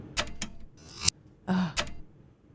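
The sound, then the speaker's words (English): A few sharp clacks from a typewriter sample in a music beat land at uneven intervals, mixed with short noisy mechanical bursts and a brief low hum, all fairly quiet with no voices. “There's a typewriter in it as well.”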